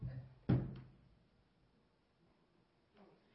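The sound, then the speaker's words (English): A chair being lifted up, marked by one solid wooden clunk, then a brief rattle and near silence with a faint shuffle near the end. “You didn't see me lifting me up, but I lift up the chair.”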